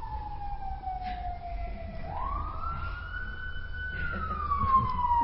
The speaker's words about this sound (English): This is the most sirens we've ever had. I should have done a talk on hearing meditation.